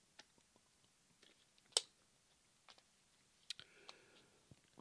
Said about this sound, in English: I had to get a little sip of the waters. Oh, get a little sip of the water.